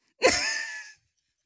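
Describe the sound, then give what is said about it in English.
A single sneeze: a sharp, loud burst that trails into a bright, breathy hiss lasting under a second, followed by a short faint sound after a pause. “Bless you.”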